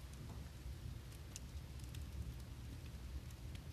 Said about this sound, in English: That would be the sound of the fireplace burning cardboard. We've been getting a lot of deliveries the last several days, and honestly, it's going to burn all the boxes.